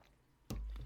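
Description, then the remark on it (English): A sudden clunk of a cup against the mic, then a low rumble and a quieter second knock as someone takes a quick sip of water. No voices. “Let me get some water or coffee. Water or coffee? Water.”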